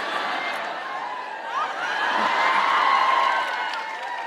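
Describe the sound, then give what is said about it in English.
An audience bursts into loud, sustained applause mixed with cheering and some whoops, swelling in the middle and holding strong for several seconds with no one speaking over it. “You're applauding a little too loudly for that.”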